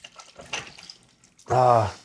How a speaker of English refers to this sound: You hear that sound? That's the sound of alcohol. That's the sound of my day disappearing.